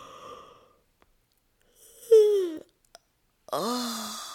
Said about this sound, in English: Can you find some space between your ribs by reaching up on one side and yawning?